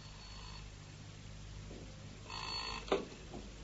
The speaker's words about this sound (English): I was just dozing off when the telephone rang.